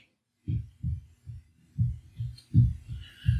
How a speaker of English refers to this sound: Hang on a second. What the? Thump, thump, thump, thump, thump, thump, thump, thump, thump. She's in there. She's banging away on the wall next to me here. Oh. Or possibly stumbling. Stumbling on the wall.